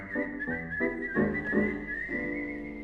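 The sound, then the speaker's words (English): A clear whistled melody glides steadily over changing musical chords, moderately loud, with smooth pitch shifts and no voices. “We whistle and we hum, beat time with the drum.”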